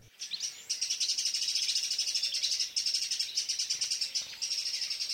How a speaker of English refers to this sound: The birdwatcher could tell from the blackcap's alarm call that the photographer was standing close to the bird's nest. The photographer, however, was oblivious. As far as he was concerned, the blackcap's frantic calls were simply part of the ambience